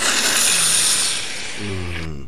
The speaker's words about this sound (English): Any good sounds? How about a hammer? Here comes a gravity hammer for you.